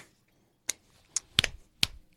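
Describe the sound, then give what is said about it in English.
A handful of sharp hand claps at an uneven pace, two landing almost together in the middle, with quiet gaps between them and no talking. “We clapping?”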